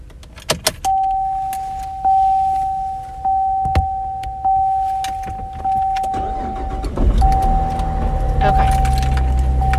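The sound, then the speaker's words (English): Thuds and jingling keys as someone settles into their car to drive to the Bronx, a steady electronic warning chime sounding throughout, then the engine turns over and rumbles to life near the end. “So I'm in my car, and now I'm gonna drive half an hour to the Bronx, and yeah, I'm gonna go take my Ramban”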